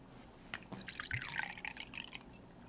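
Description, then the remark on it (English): Liquor pours into a big shot glass, filling it up, in a short trickle with splashy, gurgling bursts that rise and fade over about two seconds, fairly quiet, with no voices. “Here, you want to listen to the pour, y'all?”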